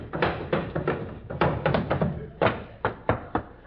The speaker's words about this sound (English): In the modest home of the Great Gildersleeve, there occurs a phenomenon peculiar to male youth. It is marked by the gentle pattering of feet.